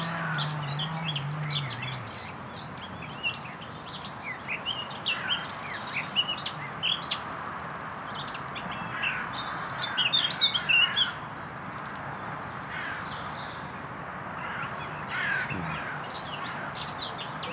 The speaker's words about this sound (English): aka the Northern Nightingale. You can hear it above the chainsaw.